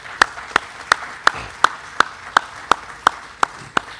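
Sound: crowd applause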